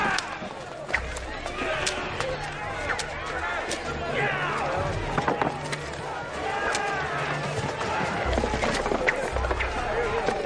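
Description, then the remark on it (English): Sheep and cattle are driven out of a temple with a whip of cords: a busy scramble of hooves clattering and thudding, with a murmuring crowd and scattered shouts mixed into the steady, fairly loud commotion throughout. “A whip from cords and drove all the animals out of the temple, both the sheep and the cattle.”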